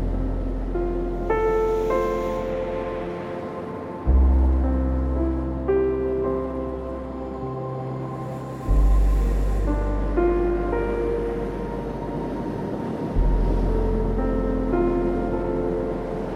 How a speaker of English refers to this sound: and protecting you as you move up and down, up and down, with the soothing rhythm of the waves.